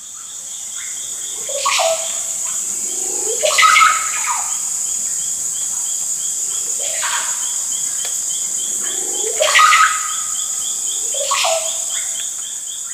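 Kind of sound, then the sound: bird, bird calling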